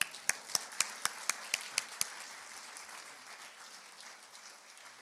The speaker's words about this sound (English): But before we do that, could I ask you, let's give the Lord one big cheer. Amen.